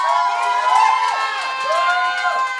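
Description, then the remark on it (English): A bar crowd at Busker's Bar in Dublin, Ireland, cheers and shouts in support of Notre Dame, many overlapping voices forming a steady, loud wash for the whole stretch, with higher-pitched excited calls rising and falling above the din. “You can hear the crowd. You can hear the love for Notre Dame.”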